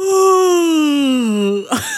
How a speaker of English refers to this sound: I don't think that was fat enough. That was not. That was too skinny of a yawn. Fatter, fatter.